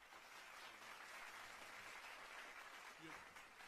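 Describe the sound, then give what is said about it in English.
Steady round of applause welcoming a special guest on a show: dense, continuous clapping that holds an even level for nearly four seconds, with a faint voice or two briefly audible underneath. “Round of applause.”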